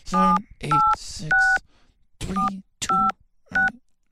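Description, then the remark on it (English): A phone keypad dials the number of the Mystery Crate Hotline: about six clear, loud touch-tone beeps at a steady, slightly uneven pace, with brief pauses between presses and nothing else around them. “I put this phone number somewhere.”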